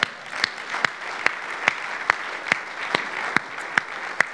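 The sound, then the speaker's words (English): A preacher claps his hands during a sermon in a steady, even rhythm, about eleven sharp, crisp claps at a moderate pace, with no talking over them. “I think that's so good, I'm going to clap my hands.”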